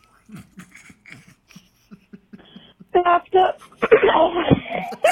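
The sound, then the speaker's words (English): Soft, halting vocal sounds give way to a loud, rough throat clearing, a couple of harsh rasping bursts lasting about two seconds at the end. “I had to clear my throat.”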